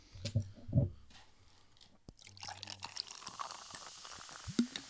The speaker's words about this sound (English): Yeah, considerable amount of fizz right off the bat. I predict that this will be fizzy.